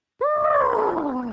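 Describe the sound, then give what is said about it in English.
A person imitates a horse with one loud, strained vocal call that starts abruptly and slides steadily downward in pitch for about a second, a second attempt at the horse noise, with no talking. “second effort, isn't it? Yeah. The horse.”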